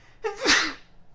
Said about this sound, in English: Excuse me for a second, I need to sneeze.